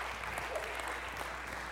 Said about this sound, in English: Let's give the Lord a hand clap of praise.